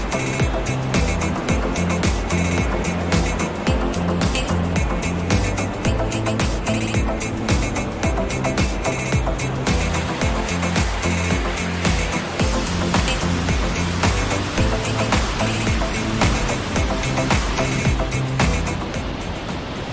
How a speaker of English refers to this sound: Just listen to that water roar.